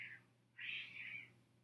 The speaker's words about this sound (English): What the fuck? Sorry, folks. I just heard a cat, like, squealing outside. I'm on the second floor. That was bizarre.